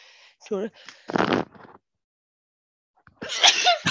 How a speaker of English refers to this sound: Oh, I think I'm going to sneeze. Hold on.